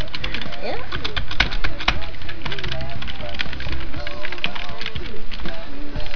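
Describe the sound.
Rapid, dense keyboard typing, a steady flurry of close clicks and clacks with a few sharper strokes, running the whole time while voices murmur faintly underneath.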